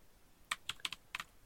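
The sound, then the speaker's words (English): Several quick, crisp keystrokes on a computer keyboard, typing while switching over to the Brave browser, clicking in an uneven burst of about six taps, fairly quiet, with no voices. “Switching over to Brave and I'm typing before it comes up.”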